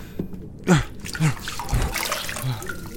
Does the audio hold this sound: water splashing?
yes